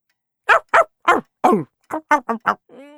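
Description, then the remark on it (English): A dog barks sharply about eight times in two quick, loud bursts, and the barking trails off into a short whine at the end. “Then they played bad dogs.”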